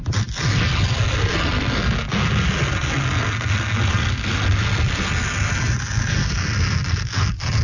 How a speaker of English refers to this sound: I see what you did there because it's tearing a sheet of paper. Didn't that sound like a rocket ship taking off?